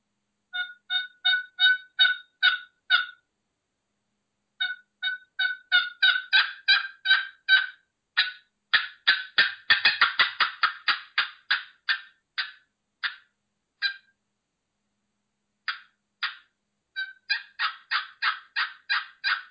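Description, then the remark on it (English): Turkey hen tree calls on a Woodhaven Real Hen cherry friction call: runs of short, raspy, evenly spaced yelps with brief pauses between series and a faster, denser flurry midway, with no talking. “This is the real hen. This is a cherry or walnut.”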